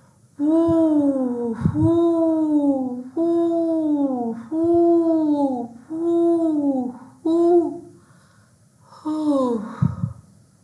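A voice imitates the howling wind of a whirling snowstorm with about seven drawn-out, wavering "whoo" sounds, each swelling and sliding in pitch, fairly loud, with short breaths between them.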